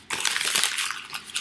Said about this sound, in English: Okay. I'm crumpling them up. This don't feel right, but I'm going to do it.